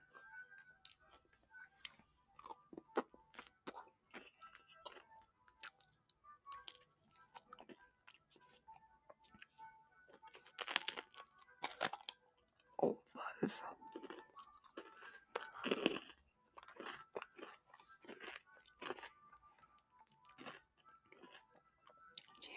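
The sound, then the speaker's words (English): Crunching and chewing of a crumbly cookie, with repeated crisp bites and wet mouth sounds, a few louder crunches standing out midway as a whole chunk breaks off, plus faint soft murmurs. “Big crunch there. A whole piece, a whole chunk fell off.”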